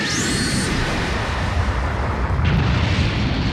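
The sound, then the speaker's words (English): A loud energy blast explosion roars continuously, a dense rumbling wall of sound with a rising whine at the start and a sustained crackling boom throughout, with no voices. “Big Bang Attack!”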